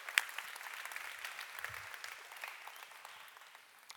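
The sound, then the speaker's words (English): An audience claps steadily for the creative people among them, a dense patter of many hands forming a continuous wash of crackling applause that holds fairly even before tapering slightly at the end. “Go ahead and clap for them. Can you give it up for our creatives?”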